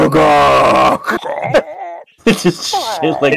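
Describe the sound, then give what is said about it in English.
A voice imitates a low, rooster-like T-Rex call: a loud, strained crowing burst, then warbling, wavering vocal cries after a brief pause, gravelly and throaty throughout. “Well, it's just like a really low, like, chicken sound.”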